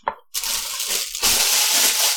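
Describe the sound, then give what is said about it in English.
A brief clink, then a steady hiss of running tap water that grows louder and fuller halfway through as someone washes dishes under a flowing faucet at a sink. No voices. “I didn't even notice him opening the bottle compared to the washing of the dishes.”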